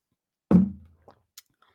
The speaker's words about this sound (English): So the movie, let me take a sip of water, okay?